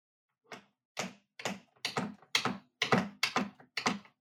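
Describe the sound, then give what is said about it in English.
Typewriter keys clack about eight times in a steady, evenly spaced rhythm, each strike sharp with brief pauses between, and no voices present. “The typewriter does seem a tad out of place, I must admit.”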